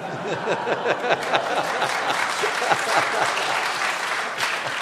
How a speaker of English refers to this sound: What's amazing is that's an applause line.